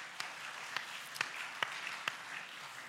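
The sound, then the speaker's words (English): The audience at Community Grace church applauds in praise of God: a steady wash of many hands clapping at moderate volume, with a handful of sharper, louder claps standing out at irregular moments. No one speaks over it. “Let's just praise God with a round of applause for God, what he's done through us.”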